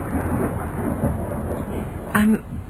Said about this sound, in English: I'm sorry. I was distracted for a moment. It must have been the thunder. It worries you? Not in the least.